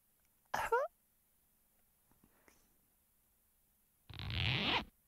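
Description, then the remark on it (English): A zipper is pulled in two quick strokes: first a short, bright zip near the start, then a longer, louder one near the end, with near silence between. “That's a zip, not a lips.”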